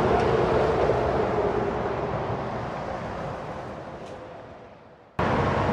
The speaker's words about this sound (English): Do you hear that sweet sound? That, ladies and gentlemen, was the sound of cars flowing on the highway. You didn't hear any horns honking. Just everybody was flowing.